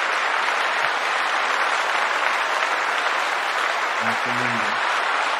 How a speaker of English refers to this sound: As a matter of fact, we need a round of applause for that. Those are good words of wisdom.